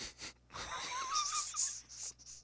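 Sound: imitated snoring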